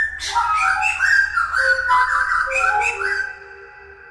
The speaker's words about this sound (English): Okay, so that was his encounter with a thrush.